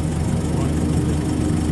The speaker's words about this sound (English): They came on a tractor.